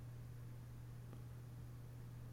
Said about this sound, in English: I heard the hiss go away.